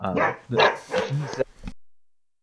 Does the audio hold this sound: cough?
no